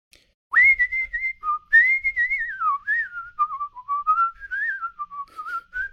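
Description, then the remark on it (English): Someone whistles a loose, wandering, showy improvised melody to show off at an audition, with swooping slides and quick ornamental turns, loud, running continuously for several seconds with no talking. “And so I kind of just went crazy, like a...”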